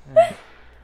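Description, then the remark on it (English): A person vocally imitates a dog, giving a short, high whimpering yelp that rises and fades within a second, loud at first then trailing off. “Bark, whimper.”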